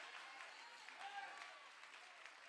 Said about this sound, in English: I wish this church would come alive with me here today and clap your hands.